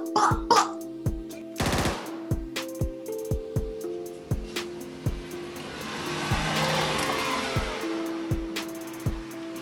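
Sharp gunshot bangs ring out one after another at an uneven pace, with a brief rapid burst like automatic fire and a noisy rumbling stretch midway, all over a low sustained tone.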